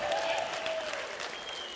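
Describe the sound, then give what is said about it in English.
An audience applauds with a dense, steady clatter of many hands clapping at once, holding an even loudness throughout, with faint high whistle-like tones riding over the clapping. “I thought the men would applaud.”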